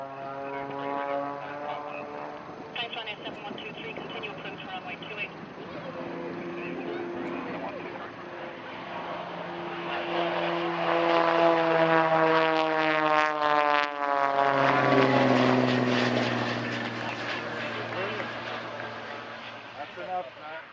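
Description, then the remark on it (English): A rescue helicopter hover-taxis down a runway at Dublin Airport, its engine a steady droning whine with shifting tones that swells louder midway, then holds strong. No voices are heard. “The rescue helicopter did a nice hover taxi down the runway for us as well.”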